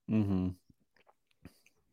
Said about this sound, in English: Go for another sip.